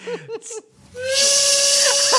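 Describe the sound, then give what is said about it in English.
A train's steam whistle sounds one long, steady, loud blast over a rushing hiss of steam, preceded by a few short puffing bursts. “They're on the train running away.”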